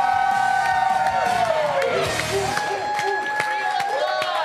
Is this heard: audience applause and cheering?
yes